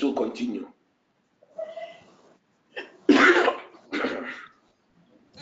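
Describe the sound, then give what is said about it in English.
Several people cough in turn, a string of harsh bursts spaced about a second apart, with one louder, fuller cough near the middle, mixed with throat-clearing sounds. “Maybe one of these days we have to go on the coughing competition.”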